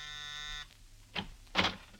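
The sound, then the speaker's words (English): A doorbell gives a single steady, buzzing electric ring lasting about half a second, then falls silent before two brief, louder clunks follow a moment apart. “Ruth's gone up to her room, probably didn't hear the bell.”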